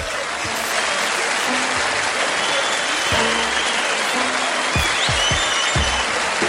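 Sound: applause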